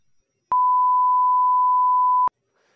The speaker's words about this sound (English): Okay, we can just beep it out because I think it'll just be funnier. I'm going to say it, but then no one's going to know.